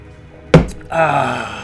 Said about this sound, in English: I'm officially slamming the door in the 96th episode of Light the Beacons.